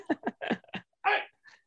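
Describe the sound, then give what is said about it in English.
A dog gives a quick run of short, high yaps and whiny barks, about six in a row, then one fainter yelp after a brief pause, fairly quiet and with no talking. “Sorry, I'm yelling at my dog.”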